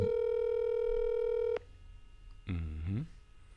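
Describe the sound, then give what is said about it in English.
A steady, buzzy telephone tone sounds loudly for about a second and a half as someone calls a friend, then cuts off; after a short pause a brief voice is heard. “I'm going to call him real quick because I know we're going to run out of time.”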